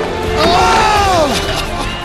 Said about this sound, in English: And all his fellow skaters are like banging their skateboards on the half pipe and they're like cheering him on.